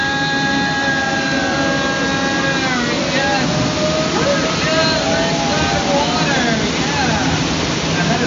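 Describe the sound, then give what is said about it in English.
A loud, steady roar of a waterfall splashing beside a tour boat, constant from start to finish, with faint murmuring voices riding over the rushing water. “The eighth wonder of the world. The one, the only, the marvelous, the stupendous. The backside of water.”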